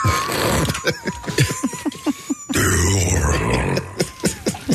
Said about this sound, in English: when I said the word dew, I burped at the same time, apparently. I want to hear this, yeah.